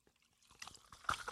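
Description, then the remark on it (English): Seltzer is poured into a glass, a brief, quiet run of splashy gurgles and bubbly crackle with a bright clink partway through. No one speaks. “I think it's fun to do the sacred basil seed with seltzer is fun because it kind of floats in there.”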